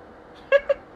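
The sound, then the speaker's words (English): A cat gives two short, high meows in quick succession, the first slightly longer, against a faint background hiss with no talking. “Okay, it's a cat.”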